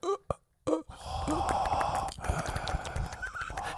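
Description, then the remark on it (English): A voice imitates breathing underwater: a couple of short sharp gasps, then a long, loud, gurgling breathy rush that continues to the end. “Now, does water breathing, is that just a longer time, or can you stay under as long as you want?”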